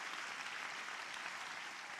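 An audience claps steadily together as a clap offering to God, a dense, continuous patter of many hands at an even loudness with no pauses and no voices over it, for about two seconds.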